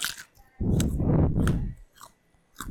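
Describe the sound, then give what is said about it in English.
Loud crunching of someone chewing a raw carrot right into a microphone, a dense burst of wet crunches lasting over a second, then quieter chews and a final crunch, with no talking. “It's just carrot chewing and...”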